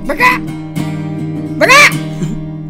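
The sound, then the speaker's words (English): A person imitates a peacock's call, two loud, nasal, wailing cries with bright rising harmonics, the first short near the start and the second longer and louder, over steady low background hum. “Peacocks don't crow, but instead they sound like me.”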